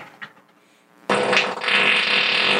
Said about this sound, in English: But listen to that bass. That's a long one. Whoa. Yeah. I wonder if you write music to that. You'd like notes for that? People have taken his farts and made them into songs.